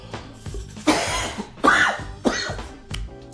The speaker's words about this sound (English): Hopefully, I gave my voice a little bit of a rest and I don't keep coughing on you. Again, I apologize. I am battling one of these colds that's going around